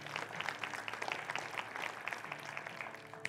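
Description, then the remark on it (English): A church audience applauding news that just under $12,000 was received one week into a giving campaign, a dense, steady patter of many hands clapping at once that holds a fairly even level for a few seconds, with no voices standing out. “You can clap for that.”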